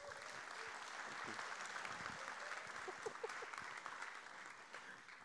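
Sustained applause from a crowd for a guest about to be interviewed on stage, a dense steady clatter of many hands clapping at an even loudness for several seconds, with a few faint voices mixed in.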